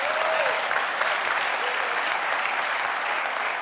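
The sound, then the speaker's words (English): A large audience applauds steadily during a worship service, a dense, even wash of many hands clapping that holds at a constant loudness for the whole few seconds, with no voices standing out. “When they come into a service like this and see you guys clapping and singing and waving your hands, most people who have not been saved look at you and think, you're all crazy.”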